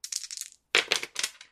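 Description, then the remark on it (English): Dice rattle and clatter across a hard tabletop in two bursts, rolled for a hybrid knowledge check with religion and occult: a lighter, quicker skitter, a brief pause, then a louder series of knocks as they tumble and settle. No one speaks. “Wow, I'm getting rid of these dice because that's a negative two.”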